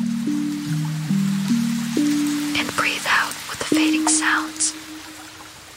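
Gentle rain hisses steadily throughout, softly layered under low, sustained soft piano tones that shift pitch in slow steps, with a few breathy swells partway through.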